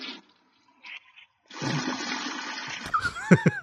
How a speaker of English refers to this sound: Can you hear me? I flushed the toilet on him. Oh, I thought you were slurping your big gulp.